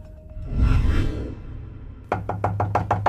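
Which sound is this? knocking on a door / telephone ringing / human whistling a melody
knocking on a door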